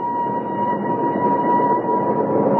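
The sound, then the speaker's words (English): A train's whistle sounds as one long, steady, loud note over a continuous rumble of rolling wheels and engine noise. The whistle holds without a break, and no one speaks. “Oh, I hope he's on this train, Uncle Flax.”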